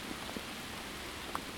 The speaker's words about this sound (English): One of them is, it's really raining now. Sounds cool.